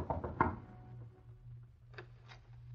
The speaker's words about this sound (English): A short time later, Jack knocked on the door of Joe Banning's small apartment on Water Street.